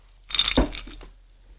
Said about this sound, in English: Well, bringing it back to State 38, because it is that time to add a little bit of ice. A little ice and chill.